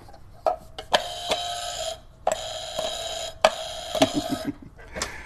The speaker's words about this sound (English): So I was wrong. Buzzer.